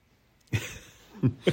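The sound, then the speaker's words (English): A person coughs three times, one harsh cough followed after a short pause by two quick ones close together, with no talking. “Oh, just got a lot of cough, I know.”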